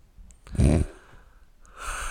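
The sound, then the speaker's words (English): A heavy breath blasts into the microphone with a loud rushing burst, followed by softer airy exhaling and a brief hiss near the end. “Are you going to breathe in it?”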